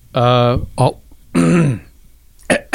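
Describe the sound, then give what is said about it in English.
A person clears their throat in an exaggerated, voiced way, with two long rasping bursts and a few shorter ones, separated by brief pauses. “You got to clear his throat.”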